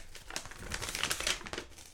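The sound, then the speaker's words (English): A sheet of paper with handwriting in glittery pen crinkles and rustles as it is unfolded, a continuous crackling with irregular bursts over about two seconds, no voices. “Oh, did I bring my paper? Oh, yeah. I wrote it in glittery pen.”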